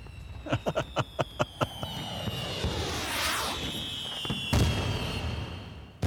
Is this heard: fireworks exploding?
yes